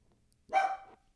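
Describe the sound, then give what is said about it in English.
A dog lets out a single short, clear bark after a moment of near silence; no one speaks. “This nigga ain't barked all night.”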